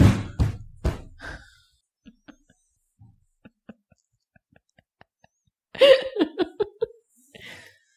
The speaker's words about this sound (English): Stop banging your arms.